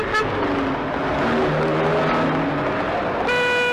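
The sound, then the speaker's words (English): A car roars past in road traffic, its engine note sliding downward as it goes, with steady road noise and a faint tonal whine rising at the end. “No rest from danger, though, because all around us is that deadly daily danger, traffic.”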